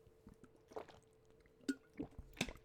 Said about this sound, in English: I walked down, got myself an overpriced bottled water, like I'm doing now.